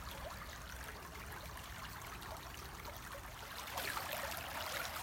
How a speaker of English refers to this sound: Intently focusing at the water going down the stream.